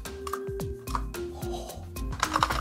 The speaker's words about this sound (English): Each of these giant keys has a custom-made giant mechanical switch behind it for proper tactile feedback. They're such meaty keys.